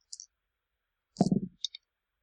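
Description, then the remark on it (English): Dice are rolled for a game check and clatter onto a hard surface: a light click, then a louder rattling tumble, followed by two small ticks as they settle. Fairly quiet, with no talking. “Well, actually, make a roll.”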